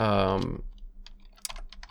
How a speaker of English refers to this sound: I will be Jamie and Joe Rogan, so you'll hear a little bit of typing here.